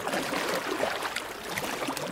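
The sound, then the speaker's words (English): Water sloshes and splashes steadily as a boat is pushed with poles across the Nile, a continuous churning wash with no voices. “We're pushing the boat across the Nile together.”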